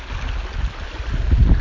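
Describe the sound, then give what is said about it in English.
Steady rushing water of a babbling brook in Japan, flowing over rocks, with a low rumbling wash that swells louder toward the end. No voices are heard. “My Babbling Brook, my own Sedona, my own private Idaho.”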